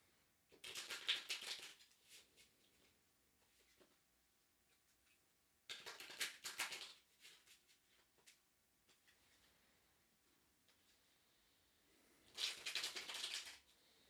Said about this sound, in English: And connect to the cards by hearing me shuffle them.